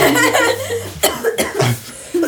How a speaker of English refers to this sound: Come on, we know about your cough. Come on, calm down.